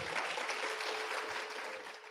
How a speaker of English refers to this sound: All right, can we get a round of applause for Ark being here with us tonight?